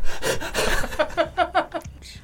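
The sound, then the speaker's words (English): A person does quick, heavy panting: a rapid run of breathy gasps, a few of them voiced, fairly loud, like someone imitating being out of breath. “As the panting, blood-stained child is led by a very efficient and completely calm-looking nanny...”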